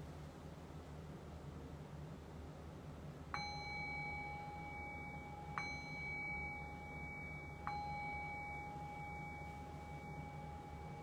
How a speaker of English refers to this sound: So in the next few moments, I'll ring the sound of the bell to signal the end of this guided meditation and bring us back into a conversational space.